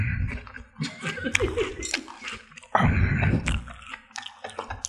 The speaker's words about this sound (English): Cinnamon Toast Crunch ASMR real quick. This has been the cereal I've eaten, though.